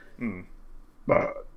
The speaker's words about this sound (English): That right there, that burp, summarizes our news, because it is not fucking goodness.